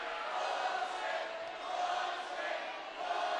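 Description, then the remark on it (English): A college basketball crowd at a USC Trojans game against Riverside roars its disapproval of a charge call, a sustained wall of booing and shouting voices that swells and dips over a few seconds without a break. “And the crowd disagrees.”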